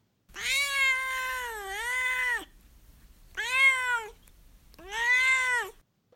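A cat named Duarte meows three times: one long, drawn-out wavering cry followed by two shorter meows, loud and clear with brief pauses between, no one talking.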